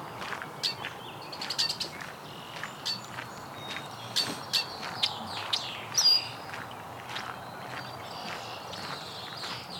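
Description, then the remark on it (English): Red-winged blackbirds call over one another in a busy, squabbling chorus of sharp chirps and trills above a steady outdoor background hiss, with no talking. “Some arguing blackbirds. Maybe all red wings here.”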